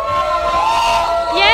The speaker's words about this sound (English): let's give them a big round of applause so that they know how excited we are to see … today here in the house for their first ever performance.